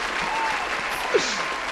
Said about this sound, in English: Please clap. Yes. We'll add it in post.